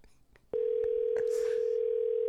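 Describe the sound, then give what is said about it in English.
A few soft clicks, then a steady, loud telephone ringback tone of an outgoing phone call starts and holds unbroken to the end, with faint background noise behind it. “Let's get Foster on the line.”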